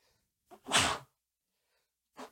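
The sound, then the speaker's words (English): A person sneezes once, loud, with a short breathy intake just before the burst and a brief rustle or breath afterward. “I'm not going to edit your sneezes out.”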